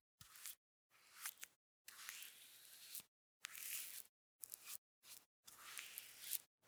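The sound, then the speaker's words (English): Thin rice paper rustles and crinkles in a series of short, soft bursts separated by brief silences as a sheet is unfurled onto a workbench and smoothed flat for traditional Chinese painting with indigo ink. “unfurls a sheet of rice paper, watching as it floats into place on her workbench.”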